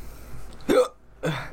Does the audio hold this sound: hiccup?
yes